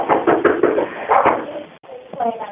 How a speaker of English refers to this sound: He's at the garage. Is it attached to your house? Nope, he's at the back patio door again. I can hear him banging again.